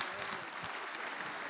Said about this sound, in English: like single clap there, and then everyone got on board